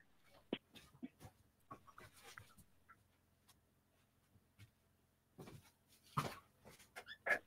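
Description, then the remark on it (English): A puppy named Pokey whimpers quietly with a few short, high whines scattered among soft rustling and light clicking. The sounds are faint, and no one speaks. “You ready to come in, puppy?”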